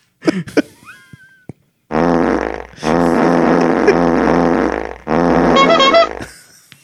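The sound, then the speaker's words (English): A few quick sputtering toots, then three long, loud, buzzing fart blasts in a row, each drawn out for about a second with a wavering pitch, with no talking. “Stupid fart air.”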